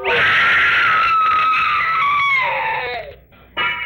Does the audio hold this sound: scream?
yes